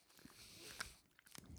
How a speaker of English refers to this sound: Ew. Very hard. Oh, I'm so like hard. Dogs like this. I can't even chew it. It's meaty. It's very like stringy.